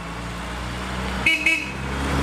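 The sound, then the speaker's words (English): Two quick honks from a large band tour bus horn, back to back, sounding over a steady low engine rumble that continues after the blasts fade. “Okay, and our lovely vehicle is a band tour bus.”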